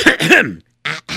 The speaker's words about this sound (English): I'm going to clear my throat so I can start the story.